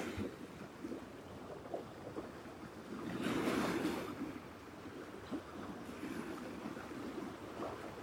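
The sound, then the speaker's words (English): Steady ocean surf breaks on the shore in the morning, washing in with a broad, noisy swell that rises to a louder surge midway, then settles back into a continuous rushing wash, with some wind buffeting the microphone. “Let's sing to the waves.”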